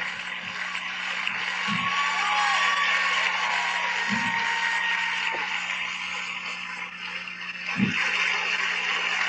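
An audience applauds and cheers in a dense, steady roar that holds at a fairly even loudness for the whole stretch, with a few scattered whoops and low thumps rising out of the noise.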